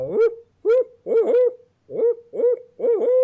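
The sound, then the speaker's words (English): A person imitates an owl, recording on a cell phone video, with a series of six fairly loud hooting calls in a quick, uneven rhythm, each a short voiced swoop with no other talking. “I'm pressing record and I am going to hoot like an owl.”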